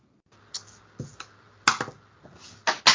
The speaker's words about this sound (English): Oh no! The dice fell on the table. Doesn't count. On the ground, I meant. Doesn't count. All right, I'll get a new dice. Screw that one.